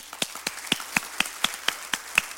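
A group claps together in a steady, even rhythm, roughly four sharp claps per second, each crisp and moderately loud, with no voices over it.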